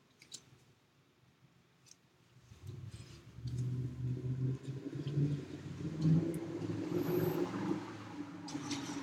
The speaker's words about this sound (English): That one's a car.